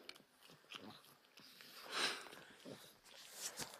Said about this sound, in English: If you can hear this like slurping sound, she's completely taken over my arm.